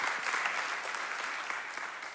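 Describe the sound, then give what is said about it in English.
A church audience claps together in appreciation of police officers, a dense, steady wash of applause, many hands overlapping into a loud, continuous crackle with no voices rising above it. “And for all of my brothers that wear the police officer uniform, that take pride in who you are, that take pride in what you do, I want to give you a hand clap of appreciation and salutation right now.”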